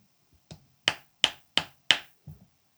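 Dry skin-on-skin slapping, like buttocks clapping: four sharp, crisp smacks in a steady, quick rhythm, framed by a couple of softer, duller pats before and after. No voices.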